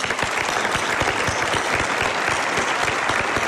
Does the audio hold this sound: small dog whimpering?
no